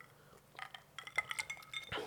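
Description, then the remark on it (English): Several light, high-pitched glass clinks ring out in a quick irregular cluster, followed by a brief soft sip. The sounds are fairly quiet, and no one speaks. “Gotta take a sip.”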